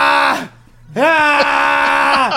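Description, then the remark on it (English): A voice mimics a wrestler screaming like a child: a short, loud wailing cry, a brief gap, then a longer strained wail that wavers and drops in pitch at the end. No other talking. “Your top babyface in the promotion, screaming like a child.”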